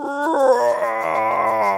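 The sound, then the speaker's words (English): A voice lets out a drawn-out, wavering roar in imitation of a monster, loud, holding for nearly two seconds with a howling, musical quality. “roar on ScribbleMonster.”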